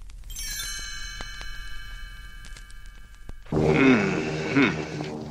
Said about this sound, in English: You'll know it's time to turn the page when you hear the chimes ring like this.